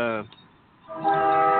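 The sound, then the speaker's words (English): A loud, droning audio feedback tone that sounds like a train horn, blaring briefly, dropping away into a quiet gap, then swelling back and holding steady. “I'm getting – it sounds like a train or something. Train horn.”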